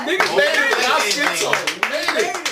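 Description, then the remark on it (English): People clap in a loose, uneven burst of sharp hand claps, celebrating making it to 2020, mixed with several voices talking and whooping excitedly over them throughout. “Everybody clap it up.”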